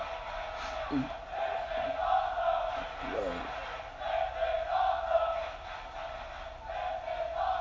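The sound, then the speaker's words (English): A large wrestling crowd roars and cheers steadily during a Sami Zayn match, with a dense wash of clapping and scattered shouts rising and falling over the whole stretch. “See the crowd. Clapping it up, seeing this fucking classic.”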